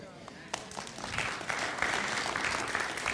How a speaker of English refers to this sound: That was a good Pentecostal clap.